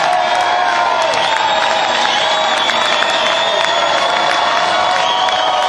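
A big concert crowd at the Wildhorse Saloon roars with sustained cheering, whistles and steady applause as the band leaves the stage taking their bows, loud and continuous throughout with no letup.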